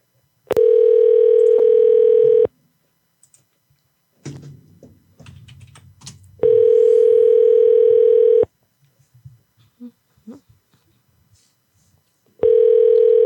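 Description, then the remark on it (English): A telephone ringback tone purrs in steady two-second bursts separated by longer pauses, three rings in all, with faint clicking and tapping noises in the quiet gaps between them, on a call to a college admissions office, George Fox Admissions. “Somebody pick up the fucking phone.”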